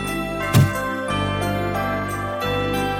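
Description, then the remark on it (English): Bright jingle bells tinkle steadily over a dense, sustained musical backing, with a sharp accent near the start and a shimmering high ring throughout; no voices. “There's nothing like the sweet sound of tinkling bells to usher in the festive spirit.”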